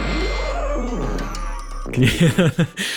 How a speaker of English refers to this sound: the little sort of elephant sound effect on the tuba.